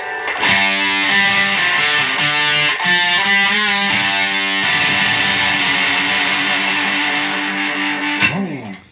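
Electric guitar played through a fuzz pedal dimed out (turned all the way up), loud and thick with saturated, buzzy distortion, strumming sustained chords that shift a few times before a quick slide at the end. No voices.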